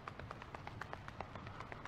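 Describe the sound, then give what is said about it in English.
A group stomps their feet and pats at the same time in a steady, busy rhythm, many overlapping thumps and slaps blending into a continuous percussive patter, moderately loud with no talking. “Stomping the feet and padding, two things at once.”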